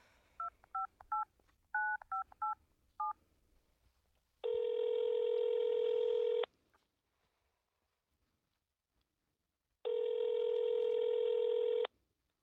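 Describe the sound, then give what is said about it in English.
Around eight quick touch-tone keypad beeps are dialed in a rapid sequence on a phone set to speakerphone, then two long, steady ringback tones sound with a pause between them, with no one talking. “Okay, just let me dial, okay? I'll hit speaker, and you'll hear.”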